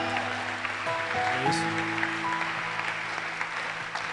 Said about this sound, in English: Oh, I thought you were clapping your hands.